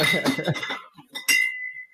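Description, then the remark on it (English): Two bright glassy clinks from tapping on tempered glass, the second sharper with a thin ringing tone that lingers, with some faint background noise around the first tap. “Tempered glass.”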